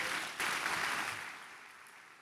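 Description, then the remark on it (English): A crowd claps together in a dense, steady wash of applause that swells briefly, then slowly fades over a couple of seconds. “You're clapping and singing.”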